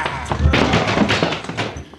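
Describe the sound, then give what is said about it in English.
A scuffle of heavy, dull thuds and thumps, with two deeper impacts standing out, as a man is flipped over another's head and knocked out, amid rustling and grunting. “You throw him over your head and knock him out.”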